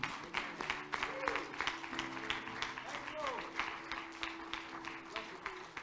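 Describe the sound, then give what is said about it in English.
A large audience claps hands steadily in praise to the Lord for several seconds, a dense, continuous patter of many overlapping claps, with faint sustained tones and crowd voices humming underneath. “Give the Lord one more hand clap of praise.”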